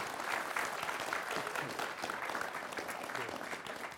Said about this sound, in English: So please, big round of applause for our wonderful panel.